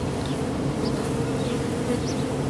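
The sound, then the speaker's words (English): A dense, steady drone of many honey bees buzzing around a brand new hive, a continuous low hum of overlapping wingbeats with no pauses and no voices. “You want to do this quickly because bees will fly into this and drown.”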